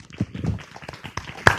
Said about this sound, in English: Let's have a round of applause for our speakers.